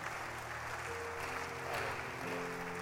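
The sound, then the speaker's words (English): A church audience claps steadily for people coming to the front to be born again, a dense wash of many hands with no pauses. Sustained low musical tones, like an organ or keyboard, play underneath the applause. “Clap your hands for them as they come.”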